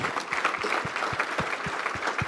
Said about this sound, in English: So let's start right now. Put your pen down and clap your hands for the Lord. Will you do that?